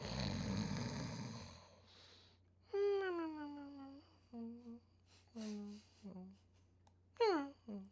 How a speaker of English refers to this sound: We tackle that segment, and then you know we talk about our sleepers, where we always cue the snores.